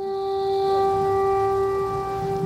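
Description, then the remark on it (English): Air raid sirens in Kramatorsk wail continuously outside, heard from inside a bomb shelter, holding a sustained tone throughout with a low rumble of background noise beneath; no one speaks. “We interviewed the mayor of Kramatorsk, Alexander Goncharenko, from his bomb shelter as air raid sirens blared outside.”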